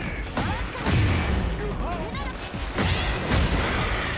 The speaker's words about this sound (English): She creates as many explosions as Jack!